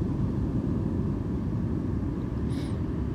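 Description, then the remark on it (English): A steady low rumble of an airplane passing overhead at the beach fills the scene, broad and continuous with a roar, while a faint higher whine briefly rises near the end. “I can barely record a podcast You know, one, it's because of all the planes flying over.”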